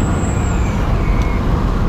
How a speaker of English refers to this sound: I had to do this because there's a truck being ridiculous. You're an 18-wheeler. You can't keep acting crazy. You already did it once.